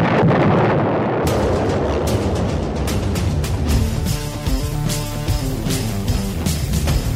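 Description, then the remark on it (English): A loud, rumbling explosion sound effect bursts in at the start of an intro and fades into a bright, jaunty tune with kazoo noises, punctuated by sharp percussive hits, with no one speaking. “And if that intro doesn't tell you what I'm all about when it comes to kazoo noises and explosions and really dumb music, then I don't know what else is going to sum up what this podcast is going to be at some point.”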